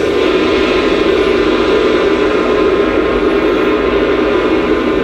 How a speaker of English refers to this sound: I don't like that ocean, though. Oh, I'm too picky. Sorry. I'm too picky for this sound machine. That was the Atlantic Ocean. You wanted the Pacific Ocean. I need the right one. That was from under the water.